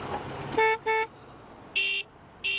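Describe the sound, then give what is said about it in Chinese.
Horns of passing cars, one after another, honk in short bursts over street noise to salute a protester: two quick toots from one horn, then two higher-pitched blasts from another, loud, with no one talking. “每天都有一辆接一辆经过的汽车向他鸣笛致敬。”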